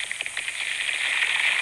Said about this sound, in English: Coat with egg and breadcrumbs or oatmeal. Now pop them into a frying pan and fry for about 5 minutes on each side.